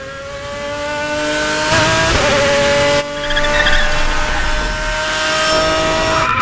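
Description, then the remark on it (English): A supercharged race car screeches into a parking lot with high, sustained tire squeal and a roaring engine, skidding continuously for several seconds, with no voices. “But it starts with this guy who's going to be talking to us, screeching into the parking lot in some supercharged race car thing.”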